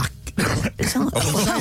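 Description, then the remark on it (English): A person with a returning cough coughs several times, harsh rough bursts separated by short gaps, ending in a throaty voiced sound. “This cough has come back.”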